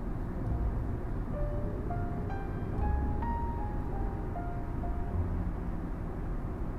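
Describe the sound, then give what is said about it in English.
Steady, low rumbling hum of a moving car's interior, constant in loudness throughout, with a faint series of soft tonal notes briefly rising above the drone. No one speaks. “I have the hum of the car noise to lull me into a uncluttered thinking.”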